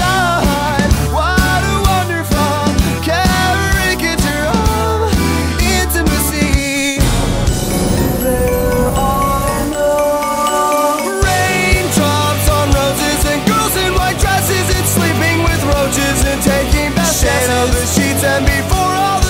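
A loud pop-rock song built on a borrowed show-tune melody, with driving drums and bass that drop away for a sparse interlude midway before the full band crashes back in.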